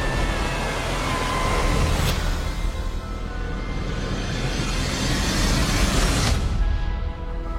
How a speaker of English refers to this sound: This is Delta Launch Control. Go for launch. Three, two, one. Engine start and liftoff.